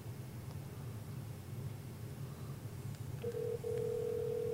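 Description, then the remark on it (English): A phone call over speakerphone: a low, noisy line hum, then a steady electronic ringing tone starts near the end and holds, fairly loud. “put it on speaker so the audience could hear.”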